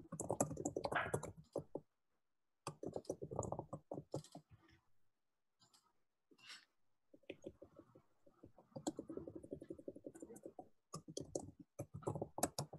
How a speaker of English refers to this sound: Okay, I'm typing them right now, and then I will hit.